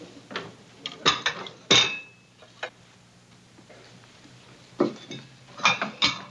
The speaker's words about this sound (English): Aunt Bee comes out of the kitchen, setting the table for dinner.